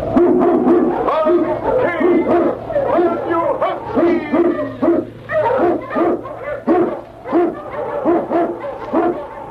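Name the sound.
eskimo sled dog barking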